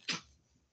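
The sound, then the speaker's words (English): A dog gives a single short, sharp cough, followed by quiet. No one speaks. “Did you hear my dog just cough?”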